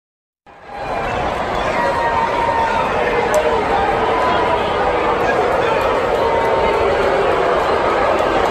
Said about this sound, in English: All right, you can hear that, right? You can hear the boos. You can definitely hear the boos.